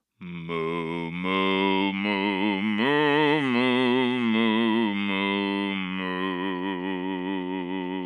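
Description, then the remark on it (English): Two human voices sing long, sustained cow-like moos together in harmony, one an octave above the other, imitating cattle with a steady, fairly loud drone that wavers in pitch for several seconds without any spoken words. “This time you sing up octave moo, and I continue regular moo.”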